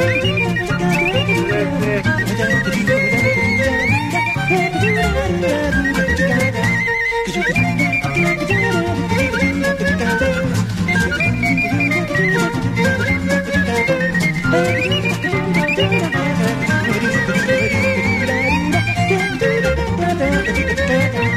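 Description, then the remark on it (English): A bouncy instrumental TV theme tune plays loud and steady, a bright penny whistle melody carried over strummed guitar, with bass and drums, a brief dip partway through and no voices. “I'm going to play the Bod theme.”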